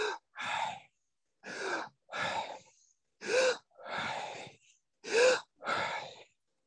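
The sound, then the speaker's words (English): Heavy, labored breathing: four paired cycles of a sharp gasping inhale followed by a longer, breathy exhale, evenly spaced with short pauses between, as a person deliberately exaggerates their inhales and exhales. “And I could, by exaggerating it slightly, you could actually hear the name Yahweh as I inhale and exhale.”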